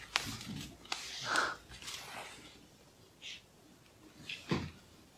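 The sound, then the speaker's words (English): Quiet sounds of a speaker pausing a talk on a Bible passage to take a sip of water: a few soft clicks and slurps, a faint swallow, and a glass being set down, with no talking. “Right, pause for a little sip of water.”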